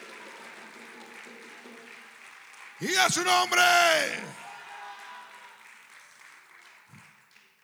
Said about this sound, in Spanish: Y el que lo crea, dele fuerte ese aplauso al Señor con el corazón.